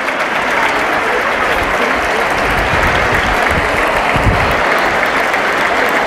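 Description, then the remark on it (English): A large crowd in a huge, packed bullring, about 80% full, applauds steadily and loudly as more horses are led into the circular sand arena, the dense clapping filling the whole stretch without pause, with a faint murmur of voices mixed in. “People are clapping as more horses are being led in now.”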